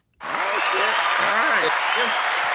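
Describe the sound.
A sudden burst of dense, steady clapping from a crowd, loud and continuous for a couple of seconds, with voices calling out and whooping underneath.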